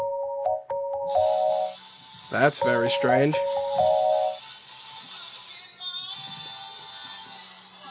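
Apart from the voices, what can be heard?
cell phone ringing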